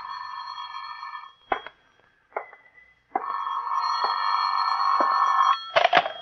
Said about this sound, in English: Phone's ringing